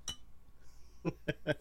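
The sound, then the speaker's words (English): Glasses of Lion Cooper Summer Candy beer clink together in a toast: one bright clink, then three quick ringing taps, with a faint high tone hanging in the background between them. “I too, senor, am enjoying a Lion Cooper Summer Candy. Hey, it is me, Juan. Cheers, Juan.”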